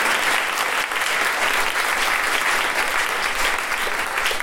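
A crowd applauds steadily, a dense, even wash of clapping that holds at a constant, fairly loud level throughout without pausing or building.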